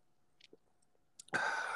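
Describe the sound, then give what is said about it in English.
A few quiet, wet mouth clicks of someone taking a first sip and swallowing a peanut butter porter beer from Unmapped Brewing of Minnetonka, Minnesota, 6.6 alcohol content, followed by a sudden loud, breathy exhale of satisfaction. No one speaks. “I'm going to take my first sip right about now.”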